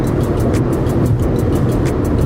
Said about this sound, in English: Look at that car. It's just like smogging up the world. Oh, that's like a car commercial.